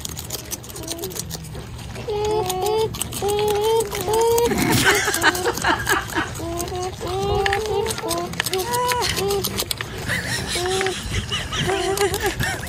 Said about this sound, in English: right after you hear how beavers sound when they eat